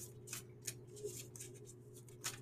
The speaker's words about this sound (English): Okay, so just give my deck a little shuffle. Let's see what messages come up for you guys.